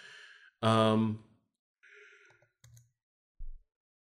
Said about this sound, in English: Sorry, there was a mighty yawn there.